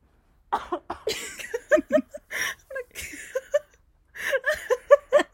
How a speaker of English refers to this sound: I just coughed into a blanket in the hopes that it won't be so loud in the ears of a listener.